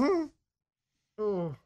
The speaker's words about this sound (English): And he's trying to keep from vomiting. He has placed both hands on his mouth with a napkin as a buffer. And he's panting. He's groaning. What's the noise for? Is it trying to come up?